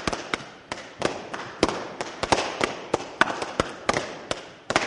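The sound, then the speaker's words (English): Balloons are popped with a nail one after another in a rapid, irregular string of sharp pops, more than a dozen loud bangs crowding together with a faint crackly hiss between them, as a pretend Fourth of July fireworks display. “I'm going to count one, two, three, and then you start popping them.”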